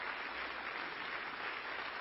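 A church audience applauds a couple married for 61 years, many hands clapping in a dense, steady wash of sound that holds at an even level for the whole stretch, with no voices standing out.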